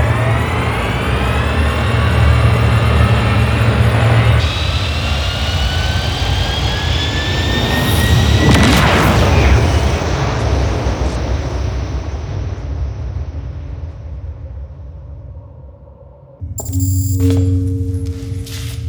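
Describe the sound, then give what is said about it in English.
Spaceship engines ignite and roar as the ship is rerouted for hyperspace, a steady low rumble and rising whine surging into a loud whoosh midway, then fading before a fresh engine hum cuts in near the end. “Engines ignited. Rerouted for hyperspace.”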